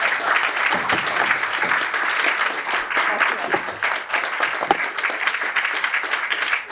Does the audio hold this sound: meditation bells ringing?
no